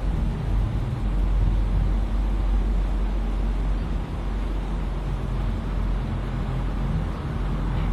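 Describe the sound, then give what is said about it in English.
A steady, continuous wash of street traffic noise with a deep low rumble, holding at an even level throughout with no distinct passing vehicles and no voices. “I can hear the air conditioner, and I can hear the traffic, and I can hear the dreadful music from downstairs.”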